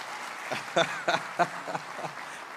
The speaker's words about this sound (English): You don't have to be timid. It's hard, isn't it? Do you clap like that in your living room when it really goes that well in worship? It's hard to have the same enthusiasm.